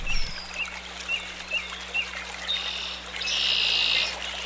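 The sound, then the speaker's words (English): A short-billed dowitcher calls alone, giving a steady series of short, high notes that break into a brief rapid chatter, set against a soft, watery background hiss and a low hum. “Probably the first thing you notice when you see a short-billed dowitcher is that it has a very long bill, twice as long as its head.”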